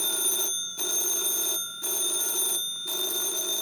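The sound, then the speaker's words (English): A telephone rings loudly in a steady electric bell trill, sounding in long bursts separated by brief pauses, with no voices present. “These girls missed an important telephone call.”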